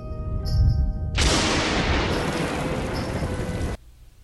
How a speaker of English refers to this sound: Yeah, the one rain cloud that appears over him. Here comes the rain again.